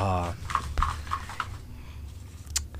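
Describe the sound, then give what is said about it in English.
A person imitates a horse, starting with a brief voiced whinny and then making a few light, evenly spaced clip-clop clicks, like hooves trotting. “Good bush horse from you.”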